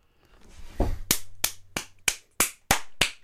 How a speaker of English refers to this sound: I don't know why he's clapping. Because he said the name of the show.